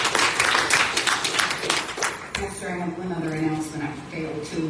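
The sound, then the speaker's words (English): A church audience claps hands in a steady burst of applause for about two seconds, then the clapping stops and a man begins speaking. “You need to get them another hand clap.”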